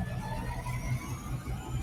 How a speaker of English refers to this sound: Oh, sorry. There's a big truck. give us a moment as it passed.